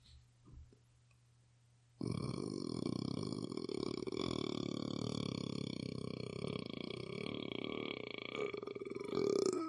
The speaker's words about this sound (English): The world record for burping is 1 minute in a bit. And I can do about 20 seconds naturally without training. And I am tempted to try to train myself, but then I would actually have to be burping all the time.